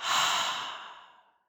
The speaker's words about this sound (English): we're going to take a deep breath in, hold that reflection at the top, and then breathe out. So breathing in, holding that reflection, and breathing out.